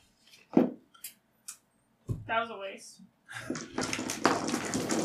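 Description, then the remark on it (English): A few short, sharp clacks of dice thrown down onto a table during a game, rolling a 20, spaced irregularly over the first second and a half, followed by people talking. “I just threw the dice down and got a 20. It's good ASMR.”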